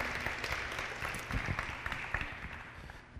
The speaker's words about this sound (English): Wild applause once more.